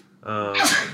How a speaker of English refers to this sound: I know I sneezed, man.